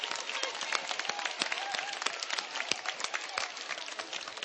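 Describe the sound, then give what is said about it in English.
A group claps warmly for the Lord in a steady, dense burst of applause that holds at an even loudness for several seconds, with no voices standing out over the sharp, rapid hand claps. “Come on, let's give a lot of clap.”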